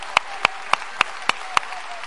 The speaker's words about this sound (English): Come on, clap your hands to the Lord and praise him.